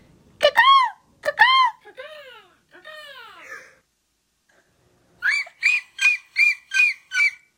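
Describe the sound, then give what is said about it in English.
A voice imitates a seagull: two sharp squawks, then a couple of falling, wailing cries, a pause, and a quick run of six rhythmic, high-pitched yelps at the end. “That was a really good seagull noise.”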